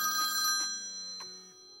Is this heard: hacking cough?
no